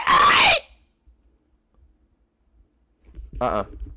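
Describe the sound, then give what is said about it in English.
A person imitates a bird right outside a window that seems to be dying, with two loud vocal outbursts: a harsh, screechy squawk that slides downward, then a long silence and a shorter strained, wavering cry. “There's, like, a fucking bird outside. Like right outside my window.”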